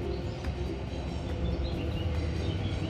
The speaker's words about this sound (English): Thames Link is rattling overhead over the railway bridge now.